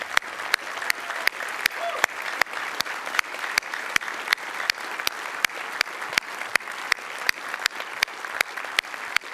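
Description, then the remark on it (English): Sustained standing applause from a large audience, honoring people present who gave their lives to the Lord. A dense wash of clapping, with one sharp clap repeating in a steady rhythm above it throughout. “But I want us all to stand in honor of those that are here, and let's give them a round of applause that really shows our appreciation.”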